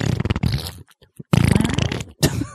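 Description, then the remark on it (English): Two loud, buzzing fart sound effect blasts, the first long and sputtering, the second after a short pause, then a brief rasping tail, with no talking. “These fart sounds sound really good.”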